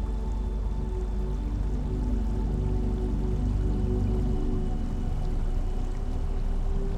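Steady, continuous flowing water with a soft trickling texture, even in loudness throughout, with no voices or other sounds breaking in.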